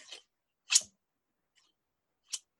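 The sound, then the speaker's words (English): Three crisp snips from large, heavy fabric scissors, unevenly spaced with silent pauses between them, each a sharp metallic cut with no talking. “That's the sound of it.”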